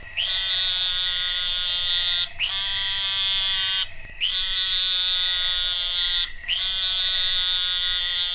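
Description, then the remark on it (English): Narrow-mouthed toad calling: four long, nasal, buzzing bleats, each about two seconds, repeated with only brief pauses between them. Loud, with no talking. “and you start hearing like basically like a little baaing sound. You're like, what in the hell is that? It just might be the narrow-mouthed toad.”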